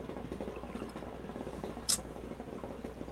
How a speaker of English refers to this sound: Pour it up. I'm making a drink.